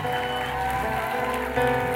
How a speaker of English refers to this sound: Will you give a round of applause for these kids as they leave?